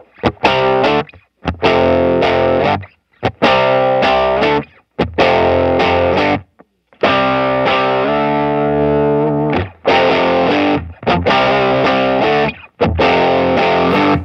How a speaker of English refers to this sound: And then the classic Nobles, which I've been using for 25 years. I mean, let's hear that thing. Yeah, I mean, that's the classic. I mean, that's my all-time favorite overdrive pedal. Here's no verb. This is just dry, right?